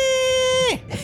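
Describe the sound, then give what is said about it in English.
A whale's roaring battle cry as it rams a boat and leaps up out of the water: a loud, sustained wail held at a steady pitch, rich in harmonics, that suddenly slides downward and cuts off after about a second. “And get to know that sound, because that is his blood call. That is his battle cry that he screams.”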